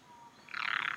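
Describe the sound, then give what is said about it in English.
A tree frog gives a high, rapid pulsing trill that starts halfway through and holds steady to the end, clear with no voices over it. “And maybe I'll find a Mrs. Tree Frog. That way it won't keep you up anymore and everyone's happy.”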